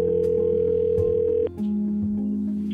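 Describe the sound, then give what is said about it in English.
A steady telephone dial tone hums continuously as a police detective places a call to an individual, briefly dipping near the middle before resuming at a lower pitch. The tone is loud, with no voices. “I was initially given this case by my sergeant, who asked me and another detective that was brand new in the unit to call an individual on the phone.”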